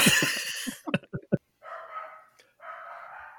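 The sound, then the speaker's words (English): A small dog lets out a quick string of sharp yips and barks, followed by two longer, drawn-out whiny cries, loud with no talking. “It's because I have a very small dog in my crotch right now.”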